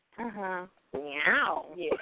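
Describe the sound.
A person vocally imitates a cat's meow, two drawn-out meowing sounds with a short pause between them, the second rising and falling in pitch.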